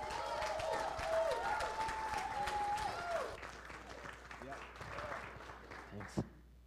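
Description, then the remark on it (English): A church audience applauds a guest speaker with dense, steady clapping, joined early on by a sustained cheer or whistle. The clapping thins out toward the end, broken by a single sharp thump. “So give a nice round of applause for Will LaMonica.”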